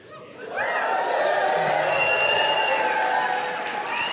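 An audience breaks into applause after a brief moment, a dense, steady wash of clapping mixed with a few cheering voices that holds at a fairly loud level to the end.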